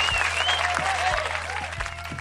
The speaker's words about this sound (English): Anyways, so he won, and we're just gonna give him a shout out, you know, and a round of applause for winning, guys.